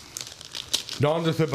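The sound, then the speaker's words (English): Crisp crinkling and tearing of stiff butcher paper being unwrapped from a rectangular Christmas gift package for about a second, then a person's voice comes in over the last rustles. “Ooh, good sound effects. ASMR. Christmas unwrapping.”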